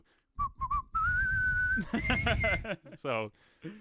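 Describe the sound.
Someone whistles the Star Wars theme tune: three short clipped notes, then one long, steady high note, before people start talking over the end.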